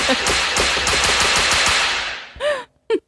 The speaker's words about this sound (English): He really loves that fucking cane whip sound. Yeah, he does.